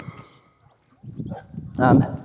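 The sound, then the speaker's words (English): Dogs bark and whine in short, uneven bursts, building to a louder, drawn-out yelp near the end after a brief quiet pause. “Look, I'm going to have to pause this while these get past these dogs.”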